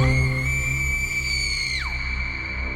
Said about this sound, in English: Their screams of horror were heard everywhere. It traveled for miles and miles. It traveled for days, months, and decades. It traveled so far, you can still hear it now.